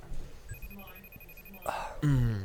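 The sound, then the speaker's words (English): A thin, steady electronic ring of an outgoing FaceTime video call pulses faintly for about a second, then a rustling burst cuts it off and a voice starts speaking as the call connects. “So it's ringing, currently ringing.”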